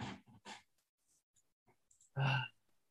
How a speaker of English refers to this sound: And the way, what reason you were clicking was because you were sticking to the beat. That was like a little bit doing it more, doing it more often. So a lot of people do that to create that. That's, yes, that's what it was. Yeah. Rhythm.